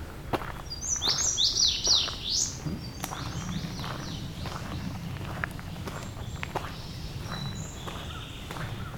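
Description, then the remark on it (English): A song sparrow sings one bright, quick phrase of rapid high notes and trills among thick multiflora rose shrubs. It is followed by steady crunching footsteps and a few faint, scattered chirps, with no one talking. “Some song sparrow.”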